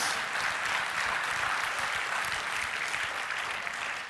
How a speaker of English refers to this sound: Y'all clapping like y'all watching a golf thing. Y'all can do better than that. That does deserves a clap. Go on.